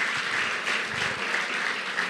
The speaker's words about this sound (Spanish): Denle fuerte aplauso al Señor, porque es la verdad.